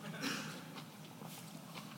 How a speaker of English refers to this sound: Can you hear me chewing?